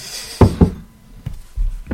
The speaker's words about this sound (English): My fucking stabilizer fell off there.